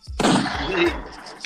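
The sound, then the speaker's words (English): A single loud gunshot sound effect bursts in sharply, its harsh noise filling the whole range before slowly fading into a ringing tail over about a second. “Pew, hey, I got the gunshots extra loud today.”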